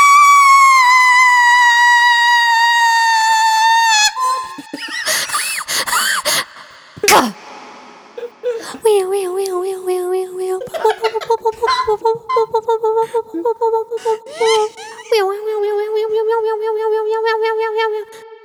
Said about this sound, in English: What were those sounds at the end? It was the car alarms. Okay. Some would say that's not part of the fireworks sound.